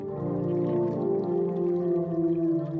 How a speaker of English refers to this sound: So that is the way that you play different musical notes. And what that does is that forces the water back inside the instrument into the sounding mechanism, the sounding chamber, and then it resonates.